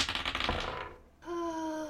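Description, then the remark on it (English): Dice clatter and rattle across a hard surface for about a second in a quick burst of clicks as everyone rolls for perception in a tabletop role-playing game, then a steady, clear pitched tone rings out and holds. “You also go ahead and everybody roll perception.”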